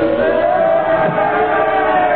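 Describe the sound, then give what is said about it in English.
A crowd yells about Lenin together in a dense, sustained roar of overlapping voices, loud and steady for the whole stretch with no single voice standing out. “They're yelling something at...”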